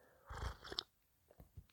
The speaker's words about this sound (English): Having a sip, guys.